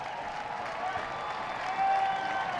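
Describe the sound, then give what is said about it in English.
A large stadium crowd at a college football game against the Blue Raiders cheers and applauds in a dense, continuous roar, coming to its feet with the final 13 seconds left, swelling slightly louder toward the end. “Crowd coming to its feet here with the final 13 seconds left, and that is going to be it.”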